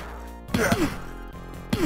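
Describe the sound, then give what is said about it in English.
Sharp, punchy impact hits from a RoboCop video game brawl, two or three meaty whacks in quick succession with a short gap before another thwack, loud with a faint musical bed underneath. “Is it a punching game? Where they punch? He does do some punching. He primarily does punching.”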